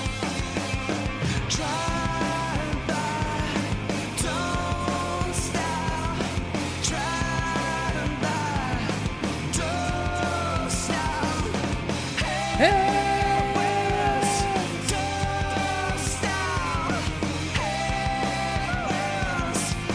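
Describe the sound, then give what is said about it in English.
A loud, sustained scream rises over a dense, driving rock track about two-thirds of the way through, holding for a couple of seconds before the band carries on. “He needed to do the scream.”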